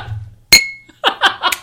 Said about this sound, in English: Really insert sound effect here of clinking glasses.